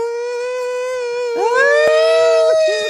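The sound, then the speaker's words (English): An ambulance siren blares loudly on a busy street beside a home, a steady high tone joined partway through by a second rising wail; no one speaks. “Yep, call the ambulance, baby, because I don't fucking know. Sorry, I live next to a busy street.”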